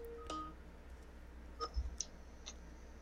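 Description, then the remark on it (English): An incoming phone call connects with a short electronic tone burst followed by a few sharp clicks and faint high beeps, spaced irregularly over a low hum, with no voices. “okay, here comes the phone call.”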